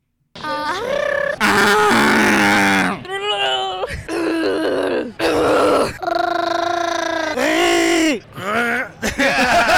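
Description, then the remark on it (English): A human voice imitates the growls of Chewbacca, the Star Wars Wookiee: a string of loud, strained, warbling howls and groans with rising and falling pitch, broken by brief pauses, with no actual words spoken. “So let's hear some Chewbacca growls.”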